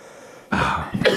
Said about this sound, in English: I've gotten into a coughing fit here.